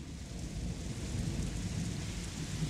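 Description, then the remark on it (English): Heavy rain pours outside in a steady, dense hiss while thunder rumbles low and continuously underneath, loud throughout with no voices. “Oh, it's really coming down out there.”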